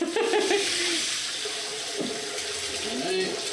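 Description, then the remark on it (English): Cooking water from boiled potatoes is drained, pouring steadily into a sink for a few seconds, a broad splashing rush with faint voices murmuring underneath. “So if you would drain this into the sink and pour away from you”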